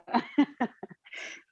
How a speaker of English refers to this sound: We gotta have a little doggy yawn on the podcast. It's good. It works.